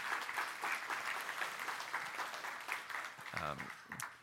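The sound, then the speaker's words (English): A crowd applauds steadily for Vacation Bible School 2018, a dense, even wash of clapping that holds for several seconds, with a few voices and cheers rising briefly near the end. “All right, well, let's give God a big round of applause for Vacation Bible School 2018.”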